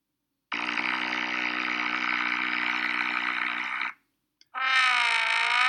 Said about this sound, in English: Okay, so this was a sound as the guy was on the water ski, a little bit of mist around, and the foghorn was leading the way for him.